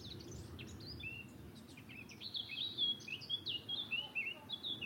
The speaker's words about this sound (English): We've got a black cap singing here as well.